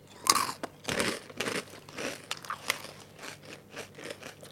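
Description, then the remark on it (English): Loud, crisp crunching of sweet-tasting crispy peanut snacks being chewed, with a sharp initial bite followed by a steady series of brittle crackling chews, no voices. “They're peanuts.”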